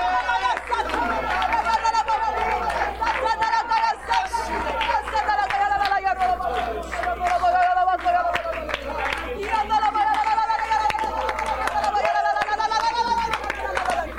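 An audience raises many voices together in worship, praising and thanking God in a loud, continuous swell of overlapping shouts and exclamations, with scattered claps underneath, sustained without pause throughout.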